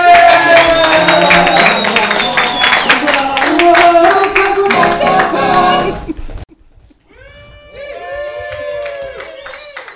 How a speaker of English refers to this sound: So, give a round of applause for the podcast that you know, probably.